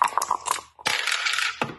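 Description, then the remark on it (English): Dice for Norwich's turn in a dice-played football match against Watford rattle with a few sharp clicks, then tumble noisily across a hard surface in a longer clattering roll that ends with one final knock. No one is talking. “Yes, we're at Delia's place, and the dice are ready on the pitch.”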